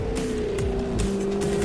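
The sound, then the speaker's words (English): The supercharged V8 engine of a 575-horsepower Jaguar F-Type R sports car roars loudly and steadily, a sustained high-pitched growl with a faint whine, with no one speaking. “What feeling do you get when you drive the 575-horsepower supercharged V8 Jaguar F-Type R? All of them.”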